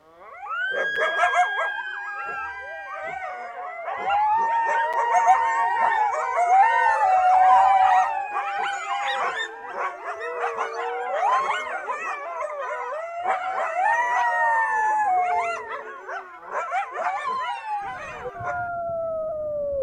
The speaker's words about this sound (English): This episode sponsored by Canis latrans, a relentlessly persecuted yet vital North American mesopredator. Now, a word from some of our coyote friends.